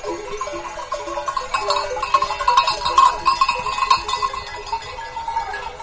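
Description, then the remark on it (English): Cattle and long-haired yak grazing in the open beside whitewashed farmhouses in the village of Yubong, with bells clanking steadily and occasional bleating calls over a soft outdoor background. No one speaks. “Cattle and long-haired yak graze beside whitewashed farmhouses.”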